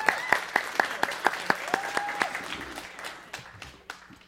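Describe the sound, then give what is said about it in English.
An audience claps to recognize the speaker's wife, a quick run of sharp, evenly spaced hand claps over a dense patter of applause that thins out toward the end. “Everybody give her a hand.”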